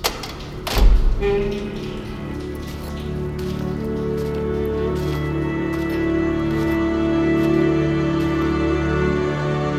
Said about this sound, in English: There's a hiss of repressurization, a cold gust. The door opens.